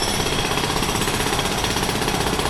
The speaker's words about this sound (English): Normally we ring the bell, but maybe today we'll jackhammer the concrete slab, as they are wont to do in the stadium.